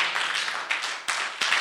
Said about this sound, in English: You may be seated with a clap offering to Jesus.